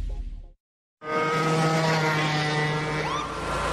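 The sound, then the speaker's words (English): After a short silence, a small lawnmower engine roars in at full throttle, the mower going 40 miles an hour in a residential area, a loud, steady buzzing drone with a slight rising whine near the end. No one speaks. “Sure, but I'm on my lawnmower.”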